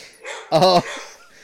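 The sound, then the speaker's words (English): One of several small dogs in a dog truck, barking one at a time, lets out one short, high-pitched bark, clear, with only faint background noise before and after it. “And some of them, like, I can't see all of them, but some of them sound rather tiny. So maybe a lot of them seem to be just barking one at a time, too.”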